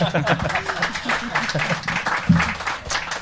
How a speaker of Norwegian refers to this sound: Ja, applaus for den, folket.